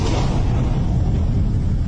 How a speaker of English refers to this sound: It's the storm, remember?